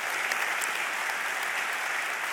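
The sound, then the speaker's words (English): Steady, sustained applause from a church audience at news of fundraising pledges, a dense wash of many hands clapping at an even loudness throughout with no voices standing out. “Yeah, you can clap at that.”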